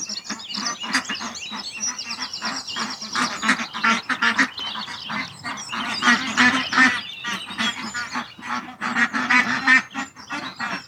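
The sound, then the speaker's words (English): A flock of ducks quacks noisily and continuously, overlapping calls in a busy, agitated chorus with no talking, as chickens go into the duck enclosure looking for duck food and several chickens go into the duck house. “What's happening now is that the chickens have gone into the duck enclosure looking for duck food, and several chickens have gone in to the duck house, which is the chicken house with no legs on it, lowered so that the ducks can get in it.”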